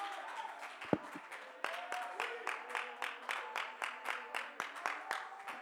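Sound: audience clapping hands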